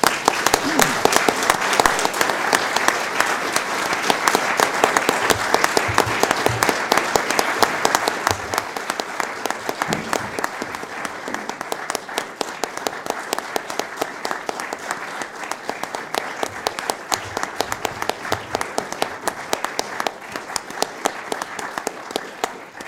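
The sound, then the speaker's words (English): An audience at Warwick Arts Centre, at a Writers at Warwick event, claps steadily in thanks for over twenty seconds, dense and fairly loud at first, then thinning slightly into a sustained patter of hands. “I just ask her to come down here and accept a small token of our thanks and a round of applause from all of us.”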